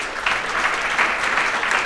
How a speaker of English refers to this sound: Will you guys all please give a warm round of applause to Mr.